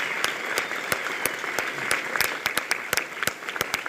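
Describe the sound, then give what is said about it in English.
A crowd claps steadily for Batman's villains, a dense patter of many hands with sharp individual claps popping out, sustained for a few seconds with no one speaking. “And inarguably, feel free to applaud the villains.”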